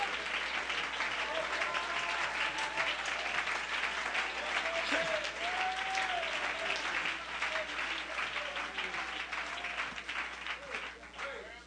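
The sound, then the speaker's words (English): An audience claps their hands for the Lord in a dense, sustained burst of applause lasting the whole stretch, with scattered shouts and voices rising through the steady clatter before it begins to thin out at the end. “Oh, give the Lord a hand clap.”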